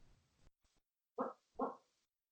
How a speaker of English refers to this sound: It's good that Phoebe's barking now because I'm going to cut all of this out.